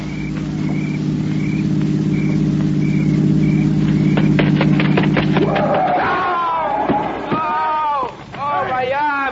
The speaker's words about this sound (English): Listen. It's a car. It's got to be the one I think it is.